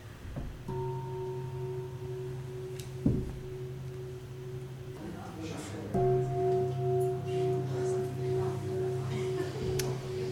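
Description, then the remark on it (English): A meditation bell rings out twice, each tone a steady, humming resonance with layered overtones that sustains for several seconds; the second ring sounds slightly brighter than the first. “And then when I ring the bell, you can start the inquiry.”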